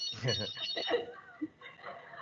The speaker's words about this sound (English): The phone is ringing.